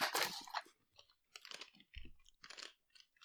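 Loud crunching of purple, wheel-shaped crisps being chewed, coming in several crackly bursts with short pauses between bites. No talking.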